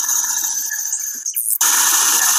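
A spirit box sweeping through stations in reverse, giving a loud, harsh wash of rapid white-noise static with buzzing tonal bands. It briefly cuts out with a faint chirp, then roars back steadily.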